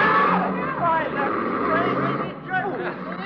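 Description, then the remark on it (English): A car's driver drives right off without stopping, past an agitated crowd: many voices shout and clamor together, loud, over a low engine rumble that runs throughout. “Why, he's driving right off. He didn't even stop.”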